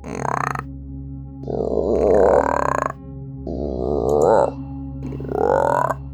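A loud, low croaking call in the jungle repeats about four times in drawn-out, rasping bursts, each swelling and fading, with a steady low hum underneath and no talking.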